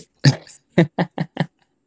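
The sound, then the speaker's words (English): The speaker's pet dog, a female, barks in a quick burst: one longer, doubled bark followed by four short, sharp barks in a steady rhythm, loud and alone with no talking. “And oh, my dog's going off.”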